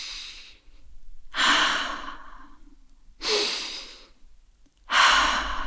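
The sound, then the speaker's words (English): Slow, deep breaths drawn in and let out in a calm, steady rhythm, four long airy breaths with quiet pauses between, a sleepy breathing exercise for getting to sleep. “Or teach her the sleepy breathing I do with Mum.”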